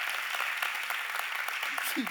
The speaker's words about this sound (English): So give her a big round of applause.